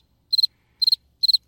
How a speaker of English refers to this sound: Crickets. Can't wait to see crickets. I'm getting a cricket sound and putting it in by the time this is done.